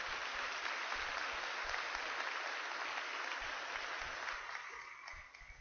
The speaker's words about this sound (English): A round of applause for them, if you would.